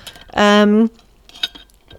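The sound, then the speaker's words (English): A loud, sustained ringing tone lasting about half a second, a coffee cup clinking as someone takes a sip of coffee, followed by quieter small knocks and a faint sharp tap. “I'm going to have a sip of coffee while I say this because it feels like a humble brag.”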